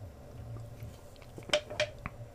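Quiet sipping from a can of Monster energy drink: a couple of short wet slurps followed by a faint click, over a low steady background hum with no talking.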